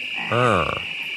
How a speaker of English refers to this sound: The following year, a Super Bowl ad with three croaking animatronic frogs delivers another boost.